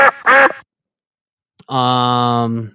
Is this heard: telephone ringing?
no